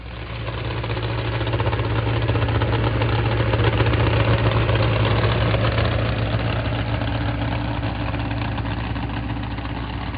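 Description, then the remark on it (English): The engine of a Chevrolet pickup truck called the Rock, from Harvard, Illinois, idles loudly and steadily at a truck pull for about ten seconds, a deep, throbbing rumble with a constant pitch and no one speaking. “Next puller. Ted Skelton comes out of Harvard, Illinois. Chevrolet pickup called the Rock.”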